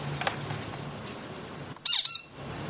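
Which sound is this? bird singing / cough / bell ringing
bird singing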